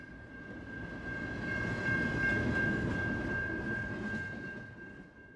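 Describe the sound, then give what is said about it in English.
A freight train rumbles past on the railroad tracks in Billings, Montana, with a steady roar that swells and then eases, a thin metallic squeal of wheels riding above the heavy clatter throughout. “Today, the railroad carries large manufactured products like coal mined in southeast Montana, along with grain and intermodal freight, which are the large container boxes you'll see on trains today.”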